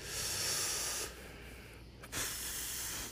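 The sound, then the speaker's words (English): A dog snores loudly close by: a long, harsh, breathy rasp, a short quiet pause, then another airy snore starting up. No one speaks. “Sorry, my dog is snoring really loudly right next to me.”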